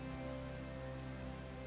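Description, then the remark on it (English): Steady, soft rain patters on a surface throughout, a continuous even hiss with no voices, accompanied by a faint low hum underneath. “Oh, I could if it stopped raining and throws a fist up into the sky.”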